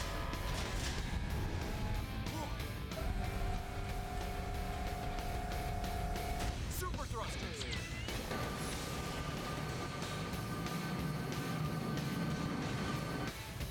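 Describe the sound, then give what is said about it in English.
Super train engines power up to full power with a loud, steady mechanical roar. Whining tones build over it, then a sweeping surge settles into a sustained, humming drone as the train approaches flight speed. “Alright, engines to full power.”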